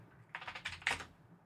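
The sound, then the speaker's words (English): A quick flurry of keystrokes on a computer keyboard, about half a dozen soft clicks in an uneven burst, fairly quiet, with no voices. “I was typing something on my keyboard, and I try to mute myself when I type so that it's not being picked up in the audio.”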